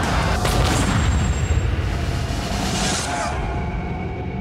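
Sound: gunshot sound effect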